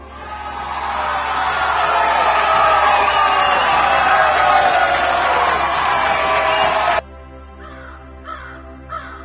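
A crowd applauds and cheers in a loud, dense, steady wash for about seven seconds, then it cuts off abruptly, leaving a few faint, short repeated bursts.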